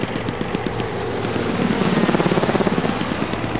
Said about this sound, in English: Come to chopper. Get that chopper down here now. I got 10 wounded and 3 dead.